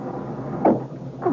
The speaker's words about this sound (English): Oh, what's this? Oh, the drawer doesn't close all the way. It's because something's stuck in the corner. Oh, there. I've got it loose.